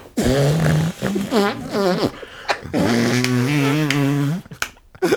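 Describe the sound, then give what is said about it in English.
A series of wet, buzzy armpit farts made by squeezing a hand against the armpit, several long flapping blasts with pitch wobbles, loud, with short pauses between. “I did an arm fart.”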